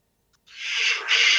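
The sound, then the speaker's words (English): A single loud, breathy sneeze, brought on by drinking a sugary drink, bursts out of silence, a hissy rush of air lasting about a second with a brief catch midway, and no talking around it. “Just sneezing sometimes when I drink sugary drinks.”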